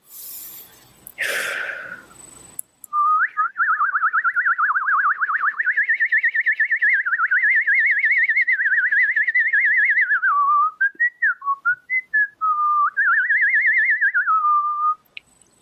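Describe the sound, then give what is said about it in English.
After a brief rustling burst, a person whistles a long, warbling bird-like tone with a rapid trill, breaking into short chirpy notes midway before resuming the sustained fluttering whistle, loud. “And you really, you can't you whistle that, like that, like without yeah”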